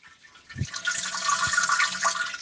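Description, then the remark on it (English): Someone urinates into a toilet: after a soft thump, a steady hissing stream of liquid splashes into water and runs on evenly for about two seconds, with no talking. “And I need to pee, so I'm going to pee.”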